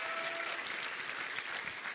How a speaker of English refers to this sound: Anybody mind clapping their hands and starting this Bible study tonight saying, I'm going to rejoice in the Lord.